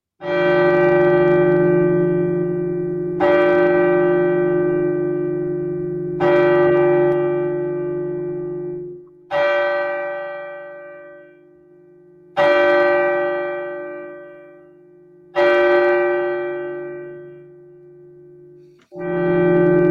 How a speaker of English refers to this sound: And then the bell struck 12.